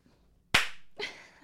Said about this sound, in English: Now you have to cut that clap.